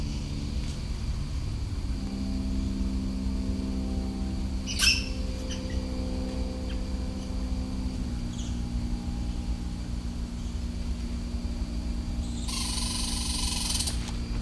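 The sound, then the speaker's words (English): A red squirrel by a trail gives a short burst of harsh, rapid chatter near the end, over a steady low engine-like hum, with a faint scratchy rustle earlier on. “Looks like a red squirrel actually.”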